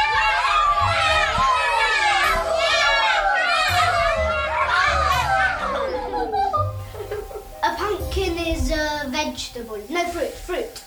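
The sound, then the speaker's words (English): A group of children cheer and shout with high, excited voices during a Halloween quiz, followed by scattered clapping and laughter as the cheering fades in the second half. “A big round of applause.”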